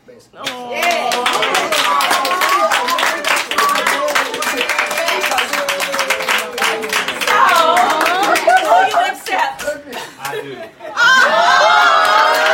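A crowd claps steadily and cheers loudly, with excited shouts and whoops rising over dense, continuous applause that swells again near the end.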